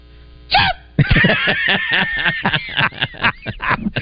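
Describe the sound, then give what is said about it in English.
A voice gives one short, high chirp imitating a smoke alarm's low-battery beep, then a burst of loud laughter and excited voices fills the rest. “can you do a smoke alarm whether its batteries are running low?”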